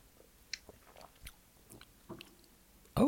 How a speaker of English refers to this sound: Looks like a Cosmo. Yeah, it's very Cosmo-y. Sips. Here we go.